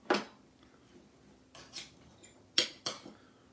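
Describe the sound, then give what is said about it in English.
A knife cuts open a corn dog, a standard-looking hot dog wrapped in dough: a sharp scrape, then a few short, crisp taps and clicks of the blade against a plate, spaced irregularly over a quiet background with no talking. “So let me just cut one open so you can see what it looks like.”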